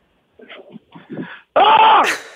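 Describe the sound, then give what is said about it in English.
A few short, low vocal sounds give way to a sudden, loud, sustained scream, lasting nearly a second and growing harsher and higher before it cuts off. “You just started screaming in the middle of the day.”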